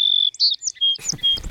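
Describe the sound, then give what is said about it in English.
A bird chirps in a quick series of high, clear whistles and tweets, fairly loud, with a rough, noisy background rising under the last few calls. “You're a bird.”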